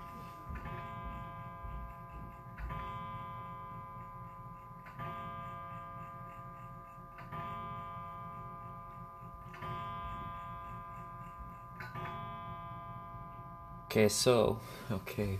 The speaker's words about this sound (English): Before I was interrupted by that clock indicating that it's now 7 o'clock.